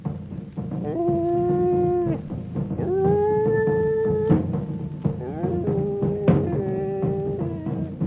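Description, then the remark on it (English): A dog, Kevin, howls on pitch in long, held notes at steady pitches, several sustained howls in a row with brief sliding changes between them, loud over a low rumbling background. “Kevin can howl on pitch.”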